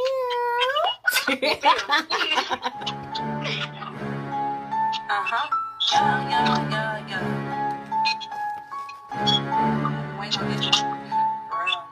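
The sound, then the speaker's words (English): A new rap single by an artist from the Southside of Atlanta plays loud, opening with a brief cat-like meow before vocals ride over a pulsing low beat in repeating sections. “Once again, tell the people who you are, where you're from, and we're gonna play this song again.”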